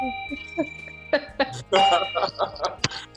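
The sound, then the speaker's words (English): A bell is hit, giving a bright doorbell-like ding whose clear tone lingers and fades, while people start talking loudly over its tail. “Well, hit that darn bell, man.”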